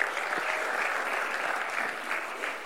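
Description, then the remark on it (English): A church audience gives a clap offering, applauding steadily: a dense wash of many hands clapping at an even, loud level with no pauses, and no voices standing out above it. “Come on, give these guys a great clap offering.”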